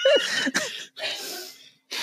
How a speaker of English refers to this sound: I'm God, this is so much editing out of coughs and I hate that you said a fruit gummy.